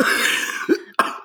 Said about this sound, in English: I've had a tickle in my throat today. Oh, great. Mm. So if I've been coughing all day, and I'm trying to not cough as I'm talking right now.